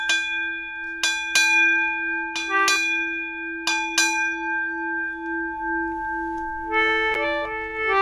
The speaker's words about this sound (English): First mate was in charge of the clock. And he would ring the bell to mark the changing of the shifts, watches. You have one of those, and it has a rhythm like this.